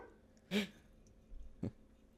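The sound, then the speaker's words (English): A dog barks twice, a sharp bark followed a second later by a softer, more muffled one. “So I think going forward, our advice would be, fuck, my dog is going off.”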